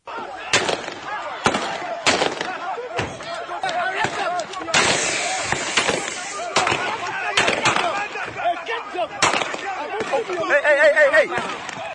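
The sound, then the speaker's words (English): Around ten sharp, loud gunshots crack out at irregular intervals, some echoing, as police and an environmental task force open fire to disperse galamsey miners in the eastern region town of Asamantanfo, over a constant background of agitated crowd babble and shouting voices. “Gunshots echo in the eastern region town of Asamantanfo as police and Ochiman Environmental Task Force open fire to dispel galamseys preventing the movement of an excavator that had been impounded.”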